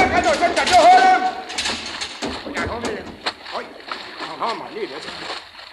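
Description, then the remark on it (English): Water rushes and splashes steadily down through a submarine's conning tower hatch after a direct hit from a destroyer, a loud churning hiss, while several voices shout and call out over it. “I got back up in time to see water gushing down through the conning tower hatch.”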